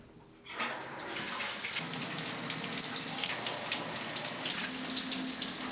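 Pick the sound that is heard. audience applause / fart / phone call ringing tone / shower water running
shower water running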